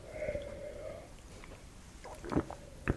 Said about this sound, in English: So this was a half liter bottle. You just poured the whole thing.